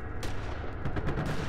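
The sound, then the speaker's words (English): Gunshots crack over a steady background rumble as gunfire dies down to occasional shots: a single shot, a short pause, then a quick scattered burst of several more pops, all muffled. “After some time, the gunfire died down and we would only occasionally hear a pop ring out every so often, and some shouting.”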